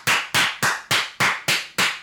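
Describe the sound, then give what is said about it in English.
Seven loud, sharp hand claps made into a microphone in a quick, perfectly steady rhythm, each one a crisp smack that rings briefly before the next. No one speaks. “No podcast clapping.”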